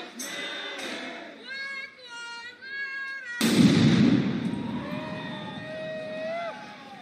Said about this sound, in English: Now, that's not a firework. Again, another angle, not a firework. And here he is actually throwing the bomb on camera.